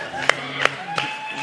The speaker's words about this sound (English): You just got to clap.